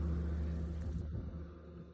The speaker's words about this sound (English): Now, careful where you stand on this road. With all of its asphalt glory, sometimes the big trucks and buses come by pretty fast.